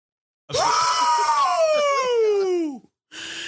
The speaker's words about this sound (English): You want to scream? You want to cue it up? Everyone's favorite game show.